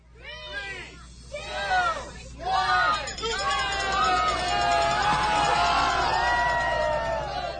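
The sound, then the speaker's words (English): A crowd at Zucchini Fest at the Homer Farmers Market cheers during zucchini race-car races, families sheltering under tents from the rain, opening with a few bursts of high, swooping whoops and squeals, then swelling into a steady, loud wash of overlapping excited voices. “leads the crowd through races for a familiar festival that returned to the Homer Farmers Market last Saturday.”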